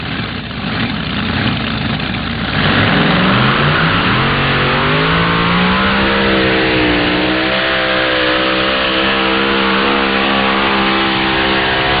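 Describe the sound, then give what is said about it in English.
A supercharged twin-Hemi pulling tractor engine, The River Rat of puller Wayne Longnecker from Cambridge, Iowa, roars loudly during a pass of 336.67, its pitch climbing over the first few seconds before settling into a steady, thundering drone, with no voices. “As far as automotive engines go, you can run two Hemis with 1471 superchargers on alcohol, or three wedge motors with the smaller 871 superchargers.”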